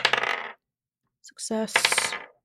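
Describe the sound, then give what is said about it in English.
Dice clatter sharply on a hard surface in two bursts, a quick rattle followed by a pause and a longer tumbling roll with bright ringing clicks, loud. “But that will come down to some dice rolls that you're about to do.”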